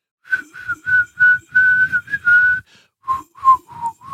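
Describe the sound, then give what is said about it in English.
People whistle the hymn tune Onward Christian Soldiers, a steady marching melody in clear sustained notes, fairly loud, with a brief pause partway through before the tune continues. No one speaks. “I had everybody whistle the Onward Christian Soldiers.”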